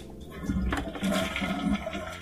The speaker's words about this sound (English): Yeah, that's not a sound effect, guys. No. We're not adding that in. I'm literally sitting next to the toilet. That's some fucking flushing.